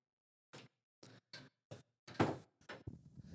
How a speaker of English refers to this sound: Will you pull that door?